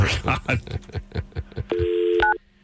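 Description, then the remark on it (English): A steady electronic telephone line tone, after a wrong number was dialed, sounds loudly for about half a second, shifting to a higher pitch before cutting off abruptly, following a quick run of rhythmic pulsing sounds. “Yeah, well, it turns out you dialed the wrong number.”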